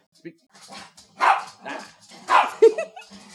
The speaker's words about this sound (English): Wait, is that Dude's voice? Uh-huh. He's got a crazy bark.